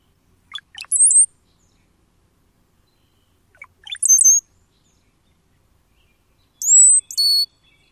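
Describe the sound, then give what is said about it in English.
A male brown-headed cowbird sings three times, each phrase a few low gurgling notes followed by a thin, high sliding whistle, spaced a few seconds apart against a quiet background. “Those crazy sounds were brought to you by none other than the brown-headed cowbird.”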